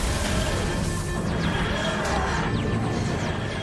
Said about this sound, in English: And she's so excited and she's ready. And she punches a button and the whole console just explodes again.